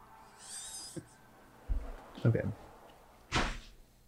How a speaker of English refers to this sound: I should probably shut that door.